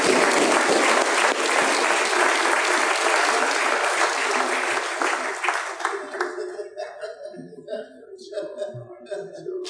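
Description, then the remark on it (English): A crowd gives a round of applause for a young man, one of the winners, breaking into loud, sustained applause that thins out after about six seconds into scattered claps, with a few voices and light laughter underneath. “Let's give a young man a round of applause.”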